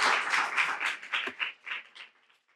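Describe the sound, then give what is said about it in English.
An audience applauding, a dense wash of many hands clapping that starts strong and gradually thins out, the claps becoming sparser and fainter before fading away by the end. “So let's give it a round of applause.”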